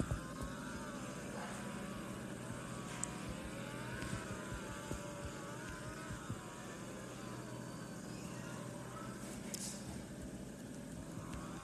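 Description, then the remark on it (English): A steady, roaring drone of racing car engines, with pitch rising and falling as cars pass on the track, continuous, with no voices. “These cars are actual beasts.”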